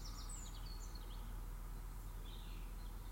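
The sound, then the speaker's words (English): Faint birdsong outdoors at a vicarage on a Sunday morning, a few high chirps and short trills in scattered bursts over a steady low hum, with no one speaking. “The ticking clock birds,”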